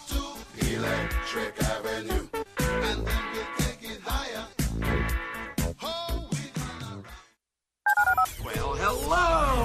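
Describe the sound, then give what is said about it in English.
A rapid run of telephone keypad dialing tones woven into a busy, loud musical jingle, with a brief silent break before a final burst of tones and music. “dial 713-780-ESPN. Dial the phone.”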